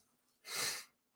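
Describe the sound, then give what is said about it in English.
A single sharp sneeze bursts out from a person during a live stream, a brief breathy explosion lasting under half a second, with quiet stillness before and after and no talking. “I'm going to sneeze.”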